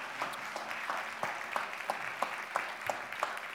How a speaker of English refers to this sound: So if you'll do me a favor, I'd like for you to welcome our panel this morning. Go ahead and give them a round of applause. They're going to come out and take their seats.